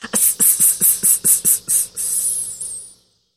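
A shrill, high-pitched insect buzz of cicadas, pulsing in about eight quick bursts before swelling into one steady drone that fades away after a few seconds. No voices.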